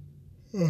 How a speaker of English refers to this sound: Make that the third yawn. I think I yawned like 3 times since I've been recording. I'm tired as shit.